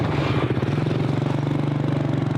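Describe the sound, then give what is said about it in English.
A Boda Boda motorbike engine runs steadily at a protection of civilians camp, a low throbbing idle with a faint rattling clatter, continuous and fairly loud for the whole stretch with no talking. “This is where the Boda Boda motorbikes are proving especially useful.”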